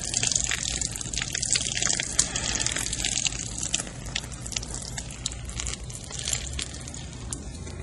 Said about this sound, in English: Relax on the pole to give me control until I say lift. Then lift the can ever so slowly. Okay. Just enough so I can tip it freely to keep the pouring rate continuous.